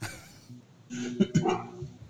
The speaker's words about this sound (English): Hold on, my dog's trying to kill somebody.